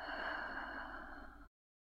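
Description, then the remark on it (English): A steady, airy, long, slow exhalation of breath during a guided breathing exercise streams out evenly for over a second, soft, then cuts off abruptly, with no talking. “We'll hold the breath for a moment, and then we'll have a long, slow exhalation.”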